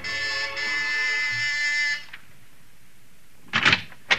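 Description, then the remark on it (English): A harsh, steady door buzzer of a house on Sutton Place, pressed at midnight, sounds for about two seconds and cuts off, followed by a pause and then a couple of brief clicks or knocks, like a door being opened. “And you're at the house on Sutton Place, and you've got your finger on the buzzer.”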